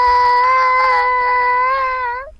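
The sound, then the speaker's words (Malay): A child, asked to cry on the spot, lets out one long, steady, high-pitched wail, a loud pretend cry held for about two seconds before it drops and fades out, with no other voices. “Okey, kalau kamu suruh mereka menangis sekarang boleh?”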